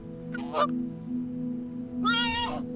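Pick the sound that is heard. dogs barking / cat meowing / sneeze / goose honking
goose honking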